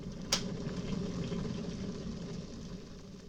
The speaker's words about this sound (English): So shall we pause? I think so. And have some tea. Absolutely. While we cogitate. Mm. put the kettle on.